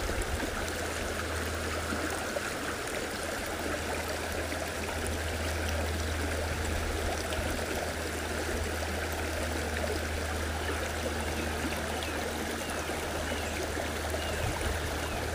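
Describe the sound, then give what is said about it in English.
A small, crystal-clear rocky creek flows steadily, its water splashing and trickling over many different coloured stones in a continuous, even wash of sound that never pauses or changes much in level. “Sleep Meditation Listening to Water in a Stream”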